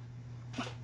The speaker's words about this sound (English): Excuse me, I had to sneeze. I apologize. Good grief.